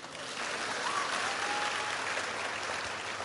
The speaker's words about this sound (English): This is the clap you're giving them.